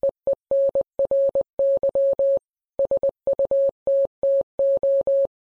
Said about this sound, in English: we might assume Henry began his message with this signal in Morse code. It's an international code, and it means, I want to communicate with you